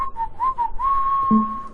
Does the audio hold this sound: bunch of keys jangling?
no